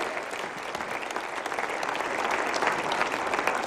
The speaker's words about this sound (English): Come on and give them a hand clap. Praise God.